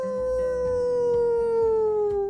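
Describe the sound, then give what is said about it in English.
An animal lets out one long, sustained howl above a burrow that slowly sinks in pitch, loud, with no other sounds or talking around it. “As the dirt and pebbles continued to fall on Nora's whole family, something was definitely above them, howling.”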